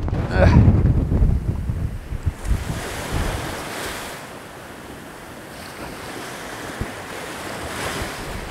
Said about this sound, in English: I'm going to find somewhere less windy, probably dangerously on the cliff somewhere